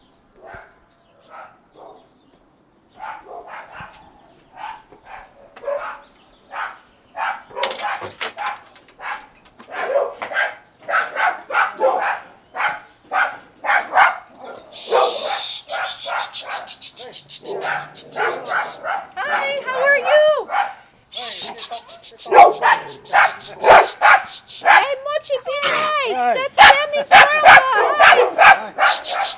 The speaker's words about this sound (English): My dog is barking.